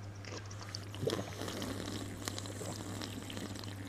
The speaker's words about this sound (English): Mmm. I have a very loud gulp. Tasty. Oh, I didn't even try to gulp that.